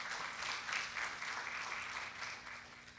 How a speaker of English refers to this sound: Yeah, you can clap.